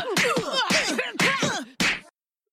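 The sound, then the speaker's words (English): A rapid flurry of exaggerated cartoon punches as bullies hit each other, four loud smacking thwacks in quick succession with swooshy, springy tails, then abrupt silence. “Was just punching the guy in the middle?”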